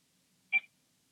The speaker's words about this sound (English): What? That one's just a beep.